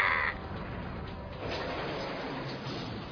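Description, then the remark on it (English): A crow gives one short, harsh caw right at the start, clear, then fades into a steady hiss of muffled background noise for the rest of the moment. “Oh no, it's a crow.”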